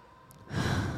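A deep, breathy sigh of air, starting quietly and swelling into a loud, rushing exhale halfway through; no talking.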